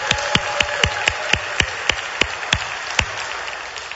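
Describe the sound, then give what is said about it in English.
A church audience claps loudly so people in Indiana can hear: sharp, steady claps ring out in an even rhythm, about a dozen strong beats over three seconds, then the clapping stops and only a faint hiss remains. No one speaks. “You're going to have to clap louder if they're going to hear you.”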